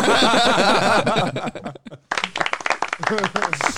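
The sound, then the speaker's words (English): Rapid hand clapping bursts out after a brief pause, dense and uneven, with people laughing and talking over it. “That deserves a good clap.”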